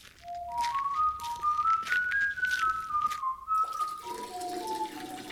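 A person whistles a wandering tune while a steady stream of human urine splashes continuously onto the soil of a garden vegetable patch, watering it as fertilizer.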